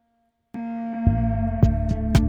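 A sustained, buzzy synth-like tone starts after a short silence, with punchy hits repeating through it as a quick delay echo with feedback from an Echo Boy delay plugin keeps the repeats coming.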